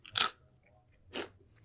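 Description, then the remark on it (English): Two loud crunches of someone biting and chewing a crisp sesame stick, spaced about a second apart, with quiet between them and no talking. “this is the sound that my mouth makes when it eats a really crunchy sesame stick.”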